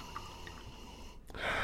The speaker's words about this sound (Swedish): Det är organic white wine. Ja. Så jag öppnar den i skruvkork. Och så är det sån här härlig imma på flaskan. Ja. Det tycker jag är gott. Då vet man att det är iskallt. Så häller upp lite till oss. Börja sippa på. Sauvignon Blanc.